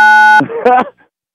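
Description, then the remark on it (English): A single loud, steady phone keypad beep lasting under half a second, from a phone button pressed by a caller's fingers during a phone call, followed immediately by a brief burst of voice. “Your fingers are so fat that and it's so greasy that you are hitting these buttons and you're ruining this phone call.”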